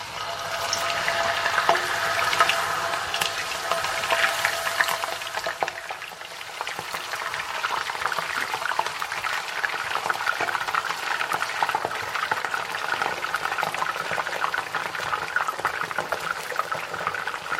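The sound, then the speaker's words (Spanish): A dense, steady sizzle of cut potatoes being added little by little into very hot oil in a frying pan, loud, with crackling bursts, spattering and bubbling that stay constant for the whole stretch, no voices present. “Vamos a echar las patatas y dejémonos de tanta charla.”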